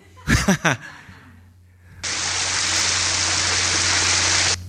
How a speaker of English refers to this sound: You know, she's going to have the, you know, she's unwrapping the soap, turning on the water, and it's this almost like, you know, we're going to indulge here, right? She's very, very, very happy to be taking this shower.